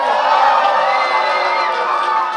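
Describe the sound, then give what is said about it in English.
A crowd cheers loudly and steadily to encourage a man before his record attempt at moving beans with chopsticks. Many voices yell and whoop together without a break, with some higher-pitched children's shouts mixed in. “Guys, before he starts, can we give him one big cheer of encouragement, please?”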